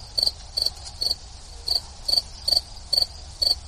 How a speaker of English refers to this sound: And so, you know, I thought it would be a good idea to, I have an actual sound machine, and I thought, you know, why don't I try out the crickets? I have a cricket setting.